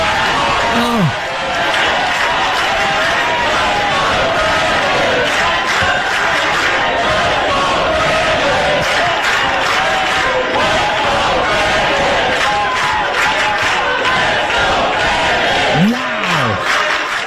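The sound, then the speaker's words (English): A large crowd roars and cheers continuously at high volume, with scattered shouts and yells rising out of the dense wall of noise throughout. “And the crowd going wild.”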